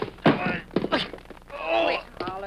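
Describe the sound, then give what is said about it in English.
A gun is knocked out of someone's hand: two or three dull, solid thunks in quick succession, mixed with strained wordless vocal sounds like grunts of a brief scuffle. “I done was knock the gun out of your hand.”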